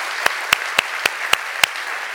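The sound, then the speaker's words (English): An audience in a church sanctuary claps hands together in a steady, unified rhythm to show they want to be reconciled with the Lord, six sharp loud claps about a quarter second apart, riding over a continuous wash of scattered clapping. “I want you to clap your hands if you want to be reconciled by the Lord.”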